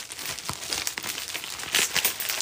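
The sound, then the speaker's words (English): Continuous crinkling and rustling of plastic packaging on a parcel sent from Washington state being pulled open, with sharp crackly bursts and a few brief tearing sounds, fairly loud, no voices. “Well, it's packaged up pretty good.”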